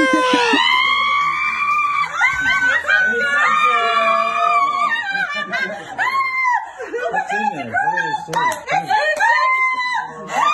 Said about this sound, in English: All right, so your mom's a grandma for the first time, mm-hmm. and we all remember her shrieking, it's a girl!